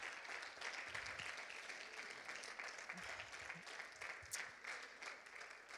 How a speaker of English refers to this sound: Would you give God a hand clap of praise tonight? Amen.